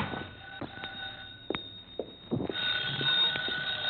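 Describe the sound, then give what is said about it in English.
A telephone bell rings in an apartment, its bright tone swelling in the second half, with a few scattered knocks and footstep-like thumps and no one speaking. “My phone was ringing when I got there.”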